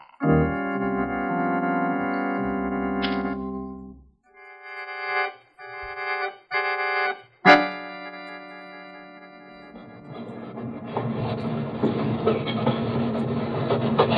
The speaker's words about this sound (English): The train is slowing down, Ken. We've reached the Carlsbad yards.